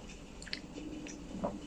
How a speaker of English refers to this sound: Shall we just get straight in and excited see what we think of the beer? We're sipping out of jugs, by the way. Obviously the best drinking vessel for a beer that we can find.